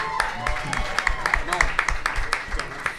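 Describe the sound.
An audience applauds with steady, dense clapping that carries on throughout, loud and even, with some voices and cheers mixed in underneath.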